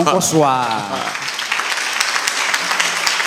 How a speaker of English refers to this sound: I'm not surprised at the way your moves have changed and your clapping has gone to ta-ta-ta-ta-ta-ta.